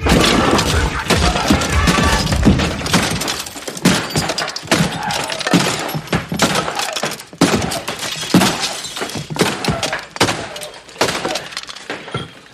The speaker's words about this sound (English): And now it's very loud and very complicated. And he takes that baseball bat and destroys Radio Raheem's radio.